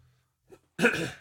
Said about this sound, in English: Sorry for the coughs, folks. It's cold. It's not COVID, I promise.